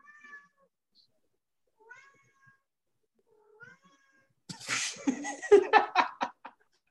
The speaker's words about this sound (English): I need to shut my cat out. Fucking cats.